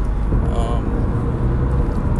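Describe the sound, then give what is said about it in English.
Steady, low road rumble from inside a car driving past a CarMax in New Haven, a continuous droning hum that stays even throughout, with a faint, brief voice murmuring in the background. “So if they hear about you, that's a lot better than, a person hearing, a CarMax advertisement for we'll buy your car, as I drive past CarMax in New Haven.”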